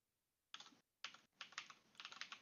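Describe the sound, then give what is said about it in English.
Rapid typing on a computer keyboard in short bursts with brief pauses, the clicks fairly loud, with no one speaking. “Sorry, I know my keyboard's probably loud.”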